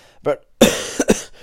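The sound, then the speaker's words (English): A man coughs: a short throaty grunt, then a harsh, rasping cough followed by two quick, sharp coughs in succession, fairly loud against a quiet background. “… coughed.”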